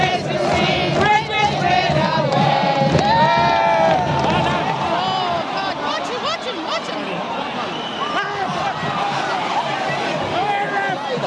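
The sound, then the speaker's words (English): A crowd of no more than 4,000 people at a match in sunshine chants and cheers loudly, many voices blending into a dense, continuous roar with rising shouts and sung phrases throughout. “The sun's still shining, the crowd is no more than 4,000 people. They're really enjoying it.”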